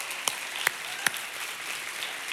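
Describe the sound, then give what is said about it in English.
A church audience claps together to celebrate and welcome all its campus locations, a steady, dense wash of applause, with a few sharper individual claps popping out above the crowd. No voices are heard. “One more time, I know you've done a lot of clapping so far, but we're a clapping church.”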